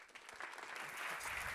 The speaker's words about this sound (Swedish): Jag tycker det är generöst att man får en applåd när det enda man har åstadkommit är att lyckas gå upp på scen utan att ramla om kull.